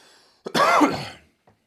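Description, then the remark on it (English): A single rough cough bursts out and fades within about a second, followed by a faint breath or throat sound afterward; no one speaks. “Still got the cough, you know what I mean?”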